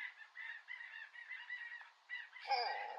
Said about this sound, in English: I can't hear over the ducks quacking.